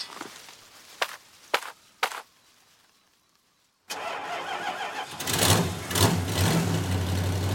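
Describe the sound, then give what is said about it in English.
A few sharp footsteps or clunks, a brief quiet, then a priest's truck engine starts up and settles into a loud, steady idle with a low rumbling hum. “I borrowed the priest's truck.”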